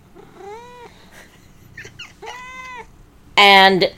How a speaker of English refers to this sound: And meow.